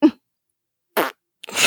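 Three short, sputtering fart sound effects, each a quick burst with silence between them, loud, the last one longer and wetter. No one speaks.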